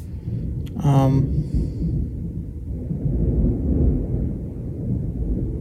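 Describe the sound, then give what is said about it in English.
Deep, rolling thunder rumbles steadily through the whole stretch, swelling loud and low from a storm, with a brief tonal vocal sound cutting in near the start. “Thunder isn't as crazy as it was earlier, but it's still pretty crazy right now.”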